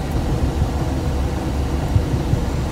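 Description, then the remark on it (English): Glider air brakes raised above the top of the wing to spoil the airflow and slow the glider in a steep descent on final approach: a steady, loud low-pitched rush of wind with faint buffeting thumps, continuous throughout with no voices. “Is that the air brakes coming on, Barry? Yeah, right. The air brakes are up.”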